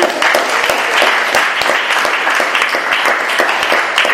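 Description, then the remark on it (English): An audience claps steadily to welcome a kora player, a dense crackle of many hands sustained at an even, fairly loud level throughout, with no voices rising above it. “So that applause is totally warranted.”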